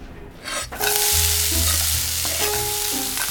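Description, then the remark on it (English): Bacon and mussels frying in a pan for beer-steamed mussels with bacon: a loud, steady sizzle surges in after a brief quieter start, with stirring scrapes and low clanks of the pan running underneath. “What are you making? Make a little beer steamed mussels with the bacon.”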